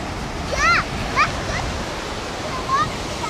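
Waves roll up onto the shore of a beach on a sunny 80-degree day in a steady, continuous wash of surf, with a few brief high-pitched chirps rising above it.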